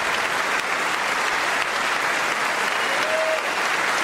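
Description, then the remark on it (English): Steady, loud audience applause at the State of the Union, honoring servicemen, fills the whole stretch, a dense crackle of many hands clapping at once with no pauses and no voices standing out. “Applaud them, everybody.”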